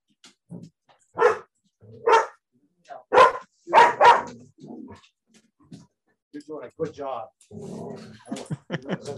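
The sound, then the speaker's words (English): A dog barks loudly at another dog out front, five or six sharp, spaced-out barks, then shifts into rapid low growls and whiny, yelping sounds toward the end. “It is Buck. He is the actual dog that we used as a model for Call of the Wild.”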